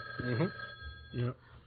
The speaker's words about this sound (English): The phone ends up kind of intruding on the quiet. And the phone kind of, ringing. Yeah, it's very loud.